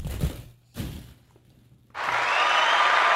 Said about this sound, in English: Okay, delayed applause. I was going to say a little delayed.